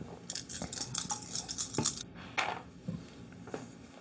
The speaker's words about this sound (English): 8 dice rolling under 5.